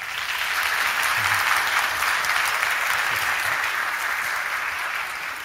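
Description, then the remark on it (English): An audience claps steadily for several seconds after a baptism at a church service, a dense, even wash of many hands with no single claps standing out and no voices breaking through. “Can we give her a clap?”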